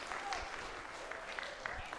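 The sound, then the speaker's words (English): A church crowd at the Mill Creek campus on a Sunday morning applauds the news that the speaker and his wife are expecting their first child in December: a dense wash of overlapping claps with a few sharper individual claps standing out, moderately loud and continuous with no speech over it. “I'm going to keep announcing it as long as people keep applauding”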